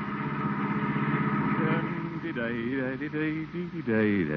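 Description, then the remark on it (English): A car engine hums steadily as the family car drives homeward with the Great Gildersleeve, the water commissioner, at the wheel, with people starting to talk over the motor in the second half. “The day's work is done, and the water commissioner is at the wheel of the family car, heading homeward.”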